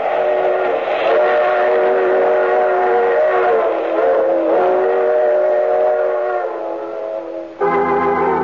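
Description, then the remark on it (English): A train runs on the rails, loud, with a steady wailing whistle held over the rumble for several seconds, then a short break and a fresh, brighter blast near the end. “Oh, you have to get off here. I'm sorry. But I'm sure we'll meet again. I take this same train every week at this time.”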